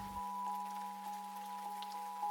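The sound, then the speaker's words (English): Steady rain falls in the high hills under a slate-grey sky, making a kind of mist, in a soft, continuous hiss with faint scattered patter over a low, constant droning hum. No voices are present. “And the rain, as it came down, made a kind of mist.”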